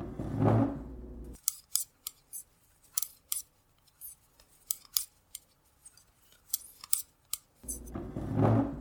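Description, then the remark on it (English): Knitting needles click in quick, uneven bursts as someone sits and knits, a series of sharp, bright taps and snaps with short pauses between them, heard on their own without any talking. “I'd really pictured the hair as being more about speed and less about sitting down and knitting”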